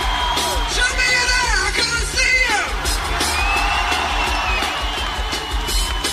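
A huge crowd screams and cheers continuously, with high-pitched shrieks and whoops rising and falling over a dense, loud wall of voices and a low rumbling beat underneath.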